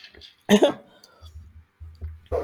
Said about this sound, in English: Oh, okay. I have to edit out these fucking coughs.